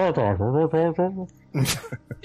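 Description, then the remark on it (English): A voice imitates a wordless prayer muffled by a helmet: a few sing-song droning vowel sounds with no clear words, then a brief breathy, hissing burst and some softer clipped syllables. “But it's muffled because of his helmet. It's like a bad broken drive-in.”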